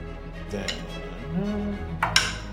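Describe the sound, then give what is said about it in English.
Dice rolled for attacks clatter across a hard surface in a few quick bursts of sharp clicks, a lighter rattle early on and a louder cluster near the end, over a low steady hum. “Roll those attacks.”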